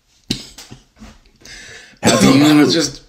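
Harsh coughing after a big bong hit: a couple of short hacks, then a loud, rough burst of coughing and throat clearing near the end.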